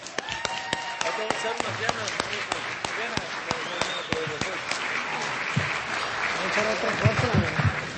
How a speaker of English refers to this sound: And here to introduce this year's Teacher of the Year, appropriately enough, is last year's winner, direct from Northern California. Big round of applause for my namesake,